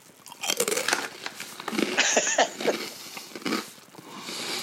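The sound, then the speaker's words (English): Loud crunching of someone biting and chewing a crisp buffalo-flavored Keto Crunch snack, a continuous run of sharp brittle cracks and munches with no talking. “Oh, there's no dead air. We hear the crunching.”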